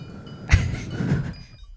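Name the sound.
imitated sheep bleating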